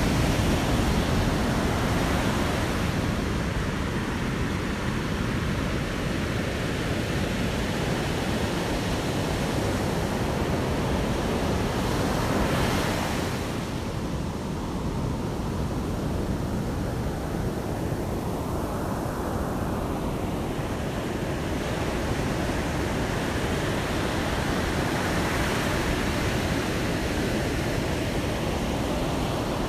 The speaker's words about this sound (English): And here, I'll give you the ocean for a little bit.